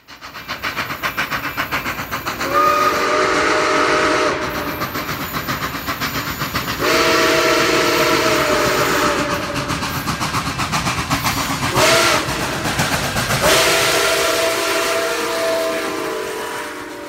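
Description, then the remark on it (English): A steam train whistle blows in several long, loud blasts over a constant roar of hissing steam and rumbling rail noise, with no one talking. “Trains are a big part of American culture because they're really fascinating in so many ways.”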